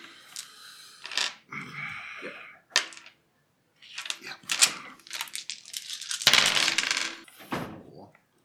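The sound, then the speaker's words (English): Eight dice plus two stress dice rattle and tumble across a hard surface in several clattering bursts, with brief pauses between rolls and no talking. “So that would be eight dice plus my two stress.”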